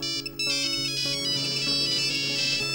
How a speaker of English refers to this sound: I have heard the grating ringtones of a dozen different mobiles. Every polyphonic bleeping, so unwelcome yet so loud.